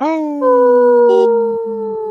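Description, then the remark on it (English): People imitate a wolf howl together, a loud, sustained wavering vocal howl that holds for about two seconds with slightly shifting pitch before trailing off. “Oh, we got to do it over again. … didn't howl.”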